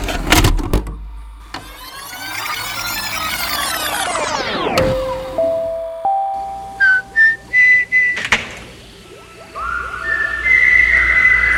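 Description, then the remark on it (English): A whistled tune of clear, held notes stepping upward, then a run of short bright notes and a final high phrase, following a loud sweeping, whooshing sound with no talking. “So now he's whistling the song across the ages.”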